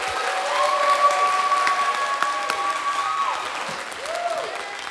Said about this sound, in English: Would you give them a hand clap real quick?